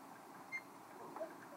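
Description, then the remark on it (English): Two short electronic beeps from a clock, the first higher-pitched and the second lower, spaced about half a second apart over a quiet, faintly hissing background. “Sorry, it's the clock.”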